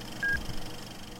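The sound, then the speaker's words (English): A single short, pure electronic beep at a steady mid-high pitch, lasting a fraction of a second, then low background hum with no talking; the beep after a countdown, cueing listeners to press play on a film. “Sinkers, press play at the beep after the countdown.”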